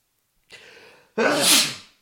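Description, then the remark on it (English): A single loud sneeze: a breathy intake builds for a moment, then bursts into a sharp, forceful blast that trails off quickly. No one speaks. “Another sneeze, I'm so sorry.”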